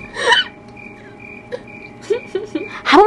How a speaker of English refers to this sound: What do you want to do? Crickets.